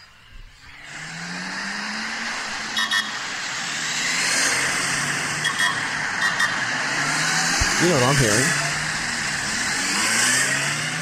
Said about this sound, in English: Well, that was the second half of an entourage for about 85 police motorbikes and cars and black vans. I thought, and a Commonwealth car with a flag.